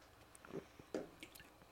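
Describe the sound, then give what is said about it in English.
Someone takes a quiet sip of a drink, with a couple of brief, soft wet slurping sounds and small swallows, and no talking. “Yeah, let's take a sip break.”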